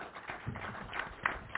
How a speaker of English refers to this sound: And if you join me welcoming Steve Phelps, President of NASCAR, round of applause for Steve.